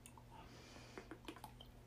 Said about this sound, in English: Now, a sip of my Fiji water.